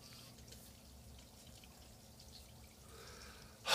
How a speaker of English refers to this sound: Fucking rain, man.